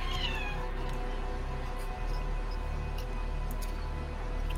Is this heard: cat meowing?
yes